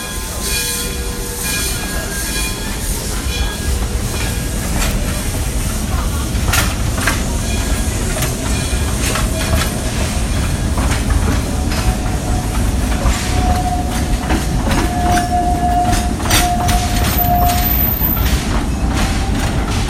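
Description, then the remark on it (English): A train rumbles steadily along the rails with recurring clickety-clack beats of the wheels, loud, and a thin metallic squeal rises briefly near the end. “Yet there isn't a train I wouldn't take, no matter where it's going.”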